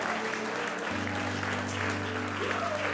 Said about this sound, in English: Ooh, come on, let's give the Lord a great clap offering, amen. Come on, give the Lord a great clap offering tonight, amen.